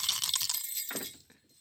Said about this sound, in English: can you give me some bells? Yeah.